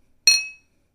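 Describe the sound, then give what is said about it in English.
A single bright clink as two glasses of cider touch in a toast, ringing briefly with a clear high tone that fades within about half a second, with no talking. “So we're going to pour it into a glass. Cheers. Cheers, Mom.”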